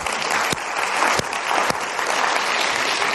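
An audience at a lecture breaks into steady applause, a dense wash of clapping that stays loud throughout, with a few sharper individual claps standing out from the mass. No voices are heard.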